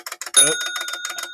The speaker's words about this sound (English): So the buzz has gone off.